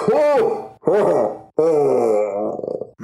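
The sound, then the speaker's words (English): A loud, booming monster roar heard from the next room, voiced as three guttural, groaning bursts; the last stretches longest and ends in a rattling growl. A human voice appears to be imitating the creature. “Just as you say that, you hear a booming roar from the next room.”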